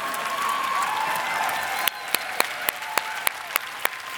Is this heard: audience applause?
yes